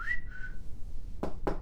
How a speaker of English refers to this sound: So we play it back to see if we can hear these whistles on the voice memo.